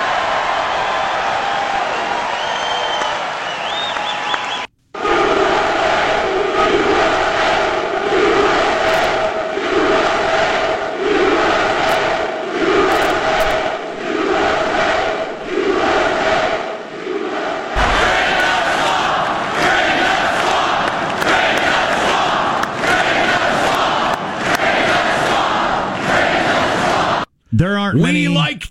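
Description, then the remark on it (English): A large rally crowd chants loudly in a steady, rhythmic beat, voices roaring together over a constant wash of cheering, with brief pauses before the chanting surges again. “We like chants.”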